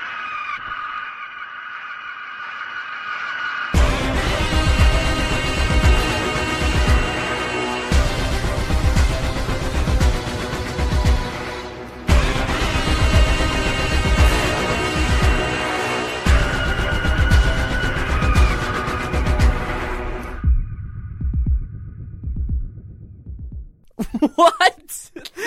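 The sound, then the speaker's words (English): A loud, aggressive film score for the Winter Soldier in the film Winter Soldier: a harsh, sustained screeching cry like an eagle's shriek rises over heavy, pounding percussion and dense, grinding layers before dropping away near the end. “And what you can also hear is he makes some interesting choices in that he has what sounds like kind of just an eagle coming down and going, ah!”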